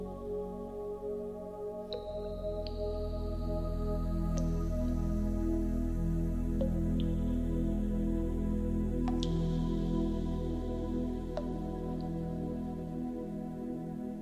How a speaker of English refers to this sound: and as another drop of water falls into the pool, the image changes again and reveals what you need to do to improve the situation or challenge.